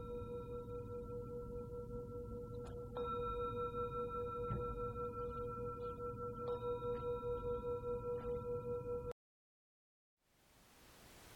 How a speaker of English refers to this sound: And when you hear the sound of the bell, then if your eyes have been closed, then opening them or gently raising your gaze.